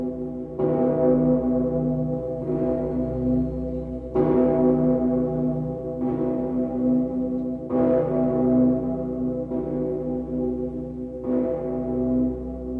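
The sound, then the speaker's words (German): A huge, deep bell of Cologne Cathedral in Germany, cast from cannons, tolls in a slow, steady rhythm, one strike about every two seconds, each rich clang ringing on and overlapping the next. It sounds loud, with no voices. “Deutschland, der Kölner Dom, der dicke Peter, aus Kanonen.”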